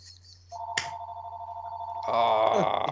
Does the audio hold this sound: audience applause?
no